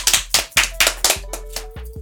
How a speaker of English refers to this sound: So I just want to give a clap to somebody on the podcast.